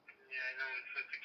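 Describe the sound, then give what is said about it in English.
A thin, tinny voice comes through a phone held up to a microphone during a three-way call, muffled and narrow-band, lasting about a second with a steady, boxy tone. “I'm doing the shit holding this phone up to a microphone.”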